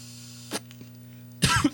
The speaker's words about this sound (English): Got a cough to get off.